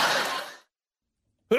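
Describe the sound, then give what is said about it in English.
A single sneeze, a loud breathy burst that fades out over about half a second. Silence follows, then a voice starts speaking at the very end. “Whoa, bless you.”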